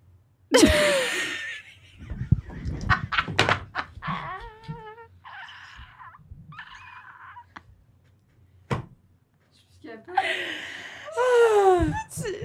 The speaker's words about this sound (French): Oh non, tu sais, je pleure, ça, c'est logique.